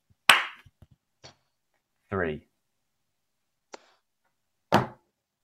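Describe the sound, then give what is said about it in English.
A few sharp hand claps and lighter taps on a table, spaced irregularly with pauses between them, and a brief spoken syllable partway through. “So we've got a clap and we've got a tap.”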